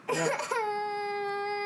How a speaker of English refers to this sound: It's just a child crying. Yeah. This is just an awkward it's intro. It's sad. It's just sad. It's sad. Yeah. It's a sad cry.